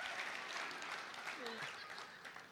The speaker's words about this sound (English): I think that deserves a hand clap for the Lord, but I'll do it myself.